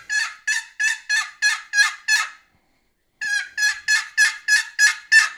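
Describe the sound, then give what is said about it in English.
Two quick runs of sharp, raspy hen turkey yelps, about seven then eight, made on a turkey call to imitate an excited hen, with a short pause between them. They sound loud and excited, with no talking. “Four or five faster yelps. That's kind of an excited hen call.”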